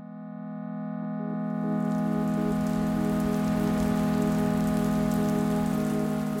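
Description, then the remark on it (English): Steady rain pattering on a surface on a rainy night at Centrepoint, fading in over the first second or two and then holding a constant hiss, with a low sustained hum underneath and no voices. “The beginning of the end of Barry's Centrepoint days, well, at least her time living there, is one rainy night not long after the big raid.”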